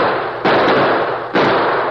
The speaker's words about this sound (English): In the shelter of rocks, Choctaw unhitched the exhausted horses, then took a position alongside Rance Purdy to fire on the defenders of the outpost station.